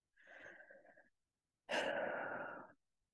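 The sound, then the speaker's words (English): A slow, deep breath drawn in through the nose, then after a short pause a louder, airy breath out through the mouth, with no talking. “Take deep breaths in through your nose, out through your mouth.”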